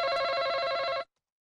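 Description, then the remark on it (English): A game show buzzer sounds once as a contestant buzzes in to answer, a loud, harsh, steady electronic tone with a slight rapid pulse, lasting about a second before cutting off abruptly into silence. “Do I talk now? Yes, you buzzed in.”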